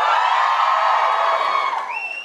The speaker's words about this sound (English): Just give us a cheer if you are from Dublin. Give us a cheer if you're from not Dublin and have come to Dublin specially for the show.